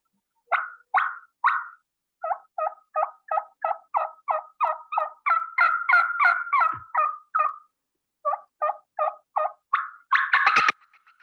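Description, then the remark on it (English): A turkey call imitates a hen's fly-down cackle, simulating a hen that just flew down: a long run of sharp clucks that quicken and grow louder, then a brief pause before a final harsh, excited burst. No one speaks. “then I'm going to give him a fly down cackle. And I'll demonstrate kind of how I lead into a fly down cackle.”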